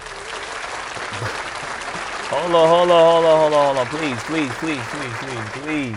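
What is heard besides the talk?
audience applause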